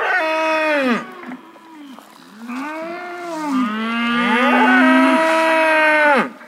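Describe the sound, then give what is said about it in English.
Cattle on a diversified farm, one of about 112 head, moo loudly, several long, drawn-out calls overlapping one another with rising and falling pitch, filling the whole stretch with no talking. “Well, this year we had about 112 head of cattle, so they kind of go in groups.”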